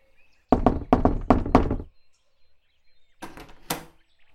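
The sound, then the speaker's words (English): A quick run of about five firm knocks on a wooden front door, made by a baker calling with a bread delivery at Mrs. McGinty's house, followed after a short pause by a softer, rattling pair of knocks. “He was expecting to be paid and knocked on the front door.”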